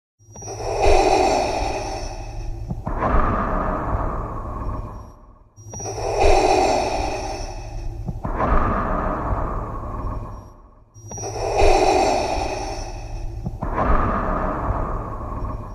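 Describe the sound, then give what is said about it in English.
Darth Vader's heavy mechanical respirator breathing through his suit's mask, three slow hissing inhale-exhale cycles with a low hum beneath, loud, with no one talking. “Got to remember the breathing.”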